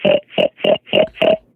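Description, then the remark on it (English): A person imitates a pig with five loud, nasal oinks in a steady rhythm, each short and grunting, followed by a faint trailing snort. “Can you make a pig sound?”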